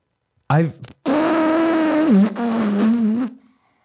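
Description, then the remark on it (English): A voice imitates a fart: a short sputtering burst, then a long, buzzing, drawn-out raspberry that wavers in pitch before trailing off, loud. “Dude, I fucking farted in that moment.”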